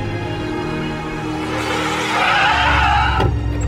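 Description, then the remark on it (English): A car engine rumbles, then tires squeal and skid as the vehicle pulls up and stops abruptly, loud and continuous with no talking. “Where's the car?”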